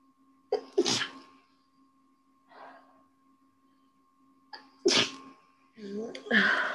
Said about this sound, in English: Sneezing.